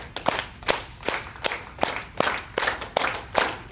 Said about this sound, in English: So, let's all just clap some hands together. And we're just going to clap our hands like this.